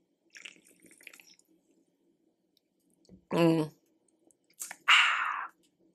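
Close-up sipping from a drink: faint wet lip clicks, a brief hummed murmur, then a short slurp and a breathy exhale right at the microphone.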